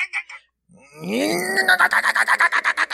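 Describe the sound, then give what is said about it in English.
An appliance in a kitchen sink, with the water running, grinding slop and a lemon seed: a few short bursts, a pause, then a loud groaning whine that breaks into a steady run of rapid, rattling pulses, almost like a growl, sounding like a pit bull. “It's got a lemon seed in there or something.”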